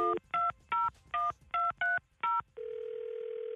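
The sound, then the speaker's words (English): A phone number is dialed to call the caller's father: seven quick touch-tone beeps in an even rhythm, then a steady continuous tone as the call connects. No one speaks. “We're going to listen in, and you call him right here, okay?”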